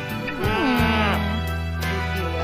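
A sheep bleats in a long, wavering call that bends in pitch before leveling into a steady, nasal drone, loud, with no other sounds around it.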